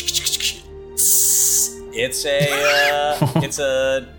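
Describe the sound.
A voice imitates spraying a garlic essential oil spray, like mace, with one steady, hissing burst lasting about half a second, fairly loud. Short vocal sounds come before it, and animated talking follows.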